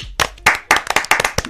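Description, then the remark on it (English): Sharp hand claps, about eight of them, come in a quick, slightly uneven rhythm, loud and crisp, with short pauses between groups and a faint murmur of voice underneath. “Can you do the... The clap?”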